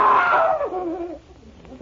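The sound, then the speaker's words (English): A man's loud, drawn-out scream for help after a disembodied woman's hand with a knife tried to stab him; it starts high and slides downward in pitch, fading after about a second into quieter trailing sound, with a brief burst at the very end. “Why did you call for help? What made you scream?”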